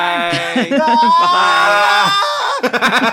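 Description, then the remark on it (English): A man lets out a loud, drawn-out yell that holds for over a second with a strained, rising pitch, bracketed by short bursts of other voices. “He yelled into the void.”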